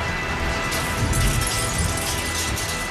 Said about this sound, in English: Wait, what's that noise? And at that moment, the night cruiser smashes through the wall of Boogeyman's hideout.